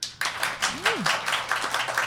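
A live audience claps steadily for about two seconds to vote on a question put to them, a dense patter of many hands at moderate loudness, with a short rising-and-falling whoop from someone in the crowd partway through.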